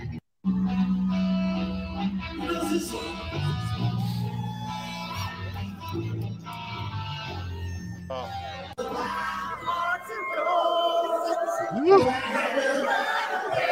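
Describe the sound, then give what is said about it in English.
A large crowd sings together over loud live music, the performer starting the line and letting the crowd sing it, their massed voices blending into a dense, continuous roar with melodic lines rising above it and a brief cheer near the end. “He just starts the line and he lets the crowd sing it.”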